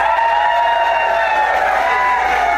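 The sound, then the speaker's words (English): An audience voting by applause for the film Hancock bursts into loud, sustained applause and cheering, with whoops and shouts layered over a dense wash of clapping that holds steady throughout. “I'll ask you by each title and then applaud for which one you want to see.”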